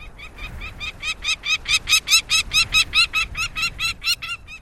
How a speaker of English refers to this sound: Northern nesting species of falcons, like this peregrine we're hearing, move southward, closer to their many admiring observers.